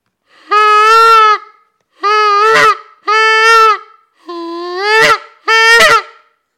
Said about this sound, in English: I'm gonna move the microphone away temporarily, and see if we can get Sam to howl on this one.